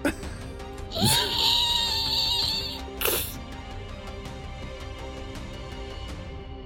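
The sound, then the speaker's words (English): A voice imitates tires screeching as a car peels out: a loud, shrill squeal held for about two seconds, then a brief sharp burst, over a steady low background. “I tried to make a screeching sound for peeling out.”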